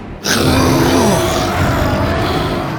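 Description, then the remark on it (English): A loud, deep, rumbling roar of a T-Rex named Buck, lowering his head as he roars, bursts in after a brief pause and sustains for nearly three seconds, with a growling, grunting texture and a low tone that slides downward. “Buck lowered his head and roared.”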